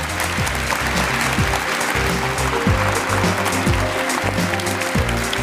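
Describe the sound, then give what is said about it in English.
An audience at a Xerocon panel breaks into steady applause for the panel, a dense, continuous clatter of many hands clapping at an even loudness for several seconds, with no voices standing out. “If you give them a round of applause, please.”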